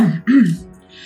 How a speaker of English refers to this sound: Escher chokes back what almost sounds like a whimper, but he tries to guise it with a quick cough.